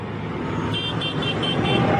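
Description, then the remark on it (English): A series of about five short, evenly spaced vehicle horn toots sounds over a steady, loud rumble of road traffic and engines at a farmers' protest in the Netherlands. “Beep, beep. Honk, honk.”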